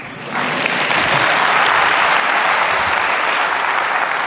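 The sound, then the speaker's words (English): An audience breaks into steady, dense applause that swells quickly after a brief quiet start, with many hands clapping loudly and continuously for about four seconds without any talking. “And by the way, I'm a doer if you like it, so please, a little round of applause will help me.”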